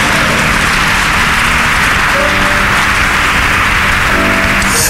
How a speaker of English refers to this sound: I didn't ask you to clap, so if you are clapping, clap well.